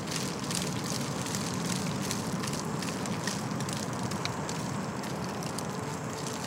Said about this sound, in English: Mutton birds lay their eggs in a burrow. This one is fixing up its burrow from last year that had been damaged. Can you hear it digging?